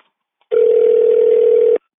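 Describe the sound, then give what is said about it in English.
A single steady phone ringing tone plays for just over a second, loud and unbroken, with a slightly thin, tinny quality, from a test phone call recorded on speakerphone with a call-recording app. No one talks. “This phone call will be recorded.”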